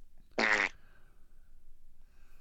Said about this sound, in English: At least I don't fart all the time.